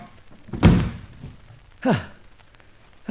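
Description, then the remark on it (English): A door opens with a heavy thud, followed about a second later by a shorter knock with a brief descending creak, then quiet with no talking. “Then behind the door as it opens.”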